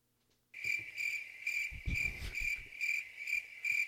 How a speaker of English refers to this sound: So, speaking of crickets, I did not hear any of those when I was in Vegas.